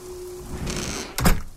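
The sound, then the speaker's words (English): A door slams shut in the wind with a single heavy thud, following a steady rush of windy, rain-like noise; the impact is loud, with no voices. “Once again, I tried propping the door open, but the wind made that impossible.”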